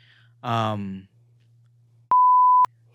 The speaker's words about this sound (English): We'll bleep it.